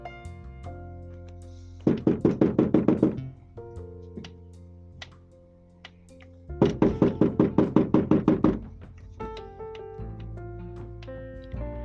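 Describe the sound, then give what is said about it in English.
Two bursts of rapid, loud knocking on a door, each about a dozen quick raps, separated by a pause, with soft sustained music playing underneath throughout. “I can hear you. I know you are there. Why not just open the door?”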